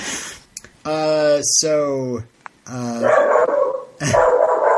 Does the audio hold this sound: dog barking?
yes